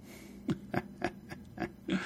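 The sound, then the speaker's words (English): A pig squeals in a quick run of about six short, sharp bursts, evenly spaced and fairly loud, with no talking over them. “The pig replied, "No, I'm the little pig that went wee, wee, wee all the way home."”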